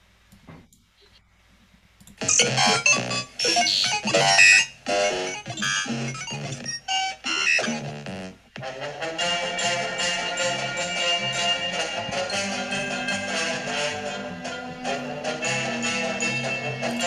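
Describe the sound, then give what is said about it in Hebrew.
A bright, bouncy instrumental theme tune from an old TV show about learning English, with punchy stabs and chiming notes in the first seconds, then a steady, rhythmic band groove that plays on without any voices. “זה מה שזה המוזיקה שאני צריך”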